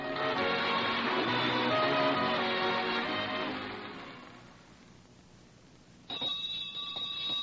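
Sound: school bell ringing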